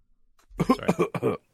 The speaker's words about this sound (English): Sorry. I just. Okay. Yeah. I coughed for you. Is that what that was? I was actually burping.